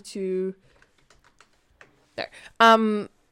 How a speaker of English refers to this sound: So Sorry, I'm just typing.